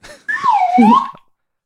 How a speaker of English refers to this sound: I don't know how there's a better way to end the show than with the slide whistle.